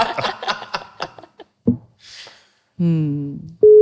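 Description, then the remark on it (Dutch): People talk briefly, followed by a short hiss, a buzzy harmonic beep, and then the steady, pure hum of a telephone line tone starting abruptly as a call is placed to Judith, the GroenLinks alderman for mobility. “Judith, we bellen je.”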